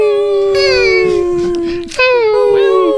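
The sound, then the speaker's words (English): A voice lets out a loud, drawn-out high-pitched whine, held steady, then breaks briefly and resumes in a second long whimper, imitating a dying puppy. “Oh my god, you guys sound like dying puppies.”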